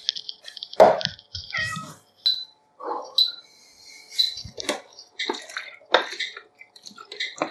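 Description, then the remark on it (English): A cat meows a few times, its calls mixed in among scattered clinks, taps and splashy water sounds, with no one talking. “What do you want, Kitty?”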